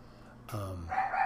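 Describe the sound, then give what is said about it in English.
A female dog barking at a cat lets out one sharp, loud bark, followed by a bright, strained yelp-like tail. No talking, just the brief outburst over a quiet background. “At one point my dog's freaking out. She's barking at a cat.”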